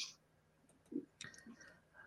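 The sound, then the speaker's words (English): A few soft, quiet clicks scattered across a couple of seconds as a computer button is pressed, with faint thumps between them and no talking. “Yeah, I was just clicking on something.”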